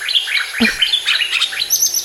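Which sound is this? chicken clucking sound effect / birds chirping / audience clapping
birds chirping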